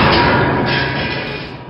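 A single loud, heavy thud of a man's head striking a pole as he knocks himself out, followed by a dense, rumbling ring that slowly fades over about a second and a half, with no one talking.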